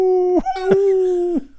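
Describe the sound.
A dog gives a few drawn-out, howling barks, three sustained tonal yelps in quick succession, loud, with no other sounds around them.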